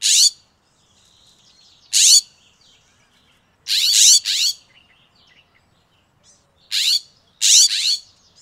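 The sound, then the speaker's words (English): A series of loud, harsh, raspy scrub jay calls rings out in short bursts, some single and some doubled, separated by brief quiet gaps, with faint chatter of other birds between them. “Here's a sample of the scrub jay call so you can hear it everywhere too.”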